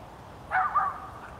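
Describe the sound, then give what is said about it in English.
A small rat terrier named Ted gives a quick, high-pitched bark, a short double yip, at a beaver that came out of the ocean for a morning swim around 7 a.m., against a quiet outdoor background with no talking. “A little rat terrier trying to figure out what he is and what he's up to.”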